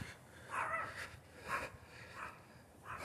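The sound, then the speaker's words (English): A dog barks four times at uneven intervals, the yelps sounding somewhat muffled over a quiet background hiss, with no one talking; heard during the Cat Search 2020 cat count. “Dog, whatever number that is. But of course, we're not counting dogs.”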